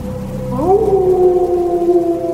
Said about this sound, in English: Ooh, howling wolf. Nice touch.